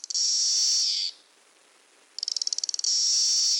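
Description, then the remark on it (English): A loud Magicicada cassini cicada gives a steady high buzz, pauses briefly, then makes a quick run of rhythmic clicks that merge back into a sustained buzz. No one speaks. “Now, Magis cicada castanei, this has a series of buzz and clicks.”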